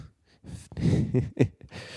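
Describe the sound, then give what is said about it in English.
Heavy breathing into a microphone: several loud, rasping inhales and exhales in quick succession, with a sharp gasp near the end and no talking. “I feel like I'm breathing a lot. Do I sound like Darth Vader?”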